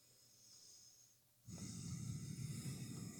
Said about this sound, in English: You breathed really hard on that. Yeah, mic. Does breathing count as a noise? I don't we think said so. Audible. I don't know. Well, yeah, but maybe it was just too close to the mic.